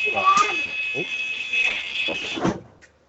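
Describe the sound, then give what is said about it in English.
A voice imitates a bus door closing buzzer: a steady, high-pitched electronic-style beeping drone held for about two and a half seconds before cutting off abruptly. “Great bus doors.”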